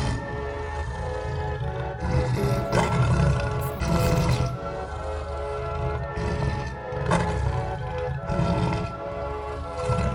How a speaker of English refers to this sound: I awoke to the roar of a lion.